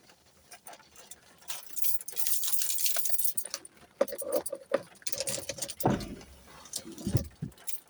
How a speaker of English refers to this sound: It is starting to rain right now, but that's okay.